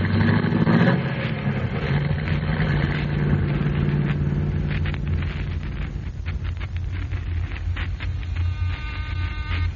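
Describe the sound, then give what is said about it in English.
A car engine cranks and catches with a loud, rough burst, then settles into a steady, low, throbbing idle that runs evenly for several seconds. No one speaks. “Here's my car. Get in, gentlemen.”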